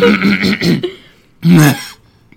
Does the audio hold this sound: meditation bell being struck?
no